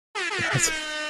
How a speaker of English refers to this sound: Yeah, got to play the air horn for that one, I think.